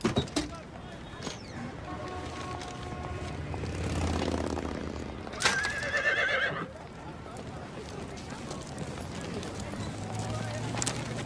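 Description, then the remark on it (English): A horse gives a single wavering, high-pitched whinny midway through, over a steady noisy background with people talking and some hoof clatter. “I was talking to the horse here.”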